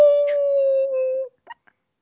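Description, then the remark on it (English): A human voice imitates a wolf howl: one loud, steady sustained note lasting just over a second, then cut off and followed by a couple of brief, faint vocal yips. “you can't hold back my howl.”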